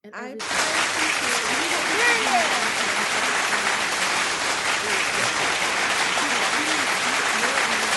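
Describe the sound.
A round of applause breaks out suddenly and holds steady for about eight seconds, a dense, loud patter of clapping with indistinct voices and cheers mixed in underneath.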